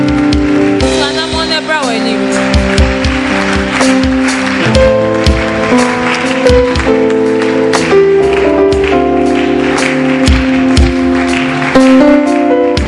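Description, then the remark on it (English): An audience claps hands in a steady rhythm over loud, continuous keyboard music with sustained chords, the sharp claps blending into the full sound throughout. “Oh, put your hands together and clap well.”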